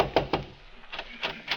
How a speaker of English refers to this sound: There was a crack of light under one of the doors. My first knock didn't get an answer, so I tried again.